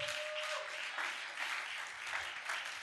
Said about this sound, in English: Clap for the Latin word.